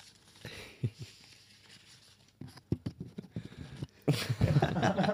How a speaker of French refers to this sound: Et attention, la règle, toujours faire de l'ASMR en prenant le petit papier.